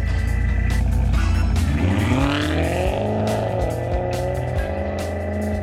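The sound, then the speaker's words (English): A powerful supercar engine revs hard as it is driven, its pitch sweeping upward as it accelerates, loud and continuous throughout with a deep rumbling undertone and no voices. “Driving any supercar for that matter, it's just adrenaline-fueled fun, this euphoric rush.”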